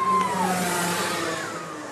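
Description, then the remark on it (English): A racing car engine revs loudly during a car race as car number 50 overtakes, its high whine dropping in pitch as it roars past, then the steady engine drone fades slightly over two seconds. “She's overtaken again as out of nowhere a car numbered 50 puts her back into third place.”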